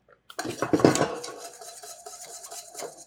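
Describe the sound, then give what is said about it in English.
A whisk clatters and scrapes rapidly against the inside of a metal pot, breaking up lumps in a thickening cornstarch mixture on the heat. The busy metallic rattle starts loud and settles into steady stirring over a few seconds, with no talking. “And with the whisk, I whisk. So I cut the lumps so that in the end it will be smooth.”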